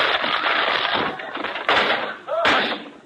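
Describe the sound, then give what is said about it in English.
A door at a radio station is smashed through as Costello walks through it with a loud crash: a sustained burst of splintering noise punctuated by two heavy thuds, with a brief creak near the end. “I'll open the door. Never mind. I'll walk through it.”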